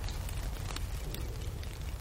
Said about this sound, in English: Will it ever stop raining? It feels as though it's been raining solidly for about a month. That's because it has.